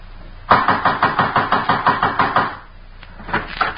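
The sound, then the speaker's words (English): Loud, rapid pounding on a door, about a dozen heavy blows in a steady burst lasting two seconds, then a brief pause before a few softer thumps. “trying to break down the door?”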